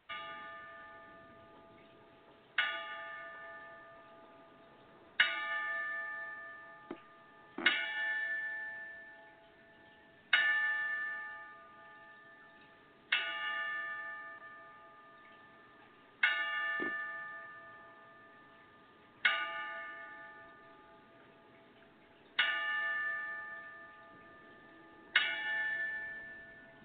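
A boxing bell is struck ten times at slow, even intervals of a few seconds as a ten-count tribute to boxers who died, each clear metallic ding ringing out and fading before the next. No voices, just the solemn tolling.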